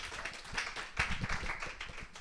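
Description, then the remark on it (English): An audience applauds, a dense wash of many hands clapping at once with sharp, irregular claps standing out, holding steady at moderate loudness for a couple of seconds. “Big round of applause for Rosh.”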